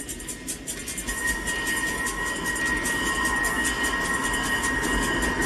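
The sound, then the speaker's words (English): A torpedo approaching in a movie scene: a steady, loud mechanical rumble with a thin high whine running through it, holding constant for several seconds with no voices. “Okay, here's the torpedo.”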